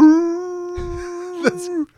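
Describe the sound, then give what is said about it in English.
A dog gives a single long, steady, loud howl that holds one pitch for about two seconds, with a brief rough, breathy break near the middle before it cuts off. “Ultimate Howlifier.”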